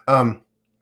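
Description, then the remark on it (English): A single short, dry cough with a throaty, voiced edge, from someone still recovering from COVID, lasting about a third of a second on its own before silence. “A little dry cough still lingering.”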